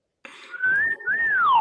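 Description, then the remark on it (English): A person whistles a short two-part call, the first note held steady and the second rising then sliding down, clear against a faint breathy background. It is a call that a father and his young daughter whistle to each other. “We have this thing we whistle at each other.”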